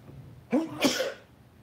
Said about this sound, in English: I'm going to sneeze.